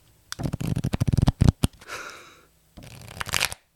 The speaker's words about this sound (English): That's cards. That's not someone farting.